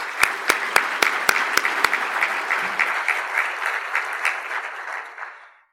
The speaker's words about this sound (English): Can we get a quick round of applause for our sponsors?